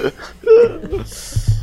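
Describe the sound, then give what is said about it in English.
A person gasping for air, a few strained, wheezy breaths with a whimpering voiced edge, followed by hoarse rasping exhales. “That's not a laugh. This is me gasping for air.”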